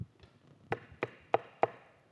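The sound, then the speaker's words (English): Four firm knocks on wood in a steady, evenly spaced rhythm, fairly crisp, with nothing else but faint background around them. “It's this Jesus who says he is standing at the door knocking.”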